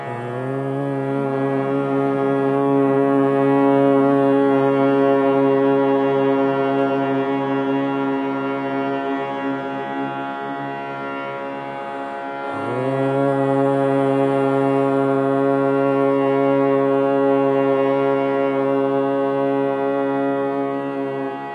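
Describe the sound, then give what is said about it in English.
A group hums together on the exhale in a steady, low drone, holding one note for about twelve seconds, pausing briefly for a breath in, then resuming the same sustained hum. “So just consciously humming as you exhale.”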